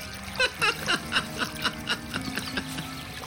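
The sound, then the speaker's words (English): Water splashes and sloshes in a quick, steady series of about a dozen moderately loud bursts as two people push and shove each other in chest-deep water. “The two pushed and shoved each other in the chest-deep water for a few minutes”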